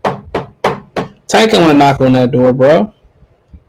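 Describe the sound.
Four quick, evenly spaced knocks on a hard surface like a door, loud, followed right away by a loud stretch of voice.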